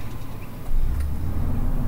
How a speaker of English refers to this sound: 11 p.m. on a Friday night, the West Elk Mine opens its gates. Cars and trucks start rolling out.